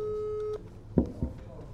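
A steady electronic telephone ringing tone of an outgoing phone call holds for about half a second, then cuts off, followed by a couple of short vocal sounds as someone picks up.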